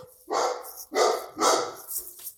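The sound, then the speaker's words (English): A dog barks three times in a steady rhythm, each bark loud and sharp with a rough, mid-pitched tone, followed by a softer trailing yip at the end. “He's like, you better name your dog.”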